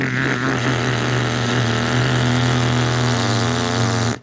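A petrol strimmer's small engine, of the kind used to cut roadside verges, buzzes in a steady, loud drone with a constant pitch and no voices, holding level for about four seconds before cutting off abruptly.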